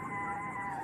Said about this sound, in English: Jeb, your phone goes off. And you see, yet again, it's time for you to take your medicine.